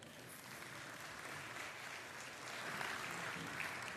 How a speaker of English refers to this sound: Terrible clap.